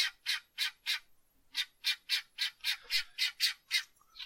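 Chickens squawk in a rapid, rhythmic series of harsh, raspy calls: a few bursts, a short pause, then about nine more in quick succession. No voices, just the birds.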